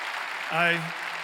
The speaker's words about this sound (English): We give God a round of applause.